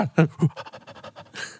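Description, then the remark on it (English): A person imitates an excited dog going for spaghetti, panting: quick, breathy huffs in a rapid rhythm, with a few louder voiced puffs at the start. “No, just doing your like imitation. Like of an excited dog.”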